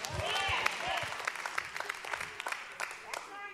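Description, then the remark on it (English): Scattered, uneven hand claps from a church audience during a sermon, a few at a time rather than full applause, with voices murmuring underneath. “I lost a few claps here.”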